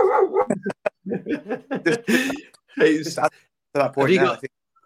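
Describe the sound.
A dog barks and yelps in a quick run of short, fairly loud bursts, tangled with voices, then falls quiet near the end.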